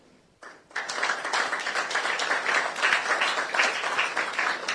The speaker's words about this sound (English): Ladies and gentlemen, as we mark the 30th edition of this very important quiz, permit me to applaud Prime Time for starting and sustaining this quiz for 3 decades.